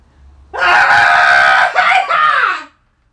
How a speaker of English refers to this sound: that was today's Daily Cathartic Scream